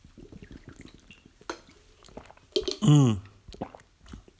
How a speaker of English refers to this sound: I'm going to get a sip of water here. Stay hydrated.